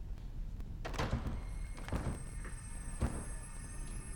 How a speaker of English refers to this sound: you broke the door.